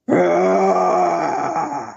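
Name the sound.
person imitating a roar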